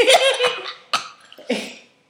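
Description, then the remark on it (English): A sputtering coughing fit: three harsh, wet coughs at uneven intervals, the first longest and raspiest, from someone whose wine went down the wrong way, with no talking. “That went down so the wrong way.”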